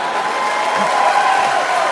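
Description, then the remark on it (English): Loud, steady applause from an audience, a dense wash of clapping that holds at the same level throughout, with a faint undertone of crowd voices mixed in. “So clap it up for my Filipino chink weird mix people.”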